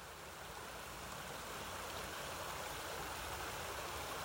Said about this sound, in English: When asked what he loved about the sound of the Whippany River in New Jersey, he simply said he loves it because he finds the sound very peaceful.